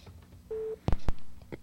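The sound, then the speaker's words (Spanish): A single short busy-signal beep sounds from a radio call-in phone line, a steady mid-pitched tone lasting about a quarter second, followed by two sharp clicks as the caller's line drops. No one speaks. “Oye, se caen las llamadas.”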